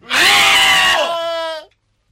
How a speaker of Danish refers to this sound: Pludselig kan hun høre en kamp derinde fra. Og et skrig. Et lysskrig. Men ikke et kvindeskrig. Lise begynder også at skrige. Så skriger Valravn. De skriger i kor.